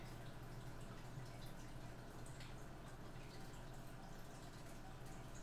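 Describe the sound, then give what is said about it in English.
A quiet, steady trickle of running water from an aquarium filter, constant and unbroken, with a low electrical hum underneath and no voices. “You should hear running water because that's my aquarium going.”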